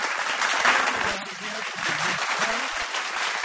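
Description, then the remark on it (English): A steady wash of crowd applause, dense clapping that stays fairly even in loudness for a few seconds, with faint murmuring voices underneath; a canned fake applause sound effect played at the push of a button on Triple M radio. “The best quality fake applause on radio.”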